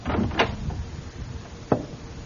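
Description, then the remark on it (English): A bookshop door on Main Street in Pleasantville opens and shuts at dusk, with a sharp clunk of the latch early on and a second firm thud just over a second later, over a quiet room tone. “I went back there just at dusk, and went in the door.”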